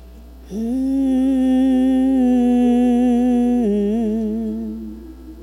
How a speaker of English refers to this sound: Research has shown that humming actually calms the stress levels in the body. Just humming it out, you know.